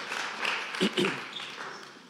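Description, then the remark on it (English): An audience claps together in a dense, steady wash of applause that lasts a couple of seconds, with a brief burst of voices rising through it partway. “Can we clap our hands one more time?”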